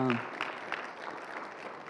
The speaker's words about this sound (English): So, yeah, let's give God a clap for that.